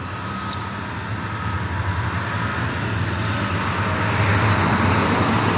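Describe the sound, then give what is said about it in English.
A school bus rumbles past on the road, its low engine drone steady and loud throughout, swelling slightly toward the end. “There go your old bus, your kindergarten bus, your kindergarten.”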